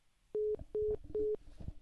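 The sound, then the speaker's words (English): Three short, steady telephone tones beep in an even rhythm, the disconnect signal of a dropped phone call, clear and fairly loud with no talking. “So, looks like I lost my guess. Maybe her phone died.”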